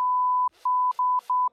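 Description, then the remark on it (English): A loud, steady censor bleep tone, beeping out swear words, holds for about half a second, then cuts in and out several times around short clipped fragments of a speaking voice. “I noticed, by the way, that you beep out the swear words in this podcast.”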